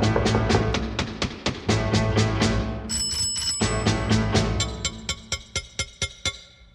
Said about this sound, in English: Sounds like someone else is knocking on the door and ringing the bell. Let me take a look out the peephole.